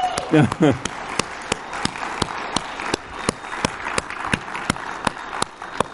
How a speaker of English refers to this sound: Clap of praise and thanks to our worship team.